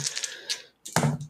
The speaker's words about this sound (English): Give me 1 second to roll these dice.